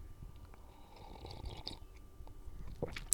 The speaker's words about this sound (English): I'll discuss it over a cup of coffee that I'm drinking right now. And if you heard that commercial earlier, It was by Folgers, and I happen to be drinking Folgers coffee right now. Let me get a little sip here.